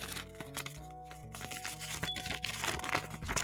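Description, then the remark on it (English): Paper crinkles and tears in a series of uneven rustling bursts as an envelope is wrestled open to announce an award winner, with a steady musical tone humming underneath. “Can't get my paper open. it was a thicker slide.”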